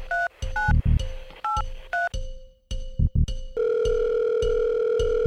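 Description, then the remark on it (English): A phone placing an outgoing call: a quick run of electronic dialing beeps gives way to a steady, continuous ringing tone, clear with no one talking. “All right, this nigga gonna answer his phone today.”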